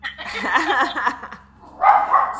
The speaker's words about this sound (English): I have dogs, so that's one of my dogs. Yeah. We may be getting interrupted occasionally.